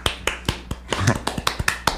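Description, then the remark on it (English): A quick run of sharp hand claps, about nine crisp smacks in a steady, slightly uneven rhythm over two seconds, each loud and snappy with a brief low murmur partway through. “That means you're healthy, so be happy. Clap.”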